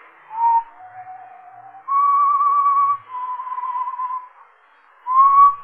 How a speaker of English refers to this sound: Maybe I heard it in my dream. Maybe not. But I heard that whistling again. That same tune. I think that's what woke me.